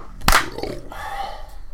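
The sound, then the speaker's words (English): One sharp, loud hand clap cracks out early, its bright burst fading quickly into a soft, lingering hum and faint murmur for the rest of the moment. “3, 2, 1, clap.”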